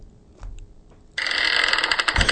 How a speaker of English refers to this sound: Creepy Door. That's a good one. That's a good one.